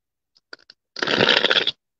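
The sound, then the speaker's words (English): A few quick taps and flicks of tarot cards, then a dense riffling burst of the tarot cards being shuffled for a tarot reading, lasting under a second, fairly loud, with no talking. “Especially when you are doing shuffling while you're talking, you have to be able to circulate your energy through your arms”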